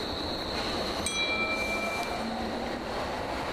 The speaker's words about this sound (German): So. It's 5.49. Genau. Ja, der Zug ist sogar einigermaßen pünktlich.